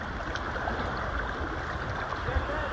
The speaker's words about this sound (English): Okay, so the next sound is from my friend Rita Wilson, who was sweet enough to send me the sound of this babbling brook, this beautiful water sound.